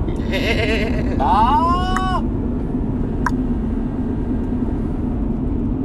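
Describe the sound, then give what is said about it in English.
A voice imitates a sheep's bleat: two wavering, nasal bleats in quick succession over a steady background hum, followed by a brief sharp click and then only the hum. “That would be probably the loudest fight you've ever heard in your life.”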